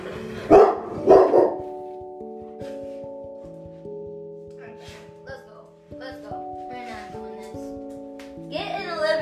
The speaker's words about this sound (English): My dog's gonna start barking.